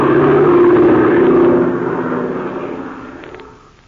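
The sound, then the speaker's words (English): A loud, droning airplane engine roar from an aerial dogfight, with a twin-engine silver-winged cabin plane circling over the battle, holds steady with a strong low hum, then gradually fades away over the last couple of seconds, with no voices. “Circling over the unequal sky battle is the bimotored silver-winged cabin plane with Ivan Shark at the controls.”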